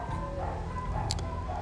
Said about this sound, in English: So, golly, sorry about these fucking dogs. They drive me crazy. They drive my poor dog Guapo crazy too.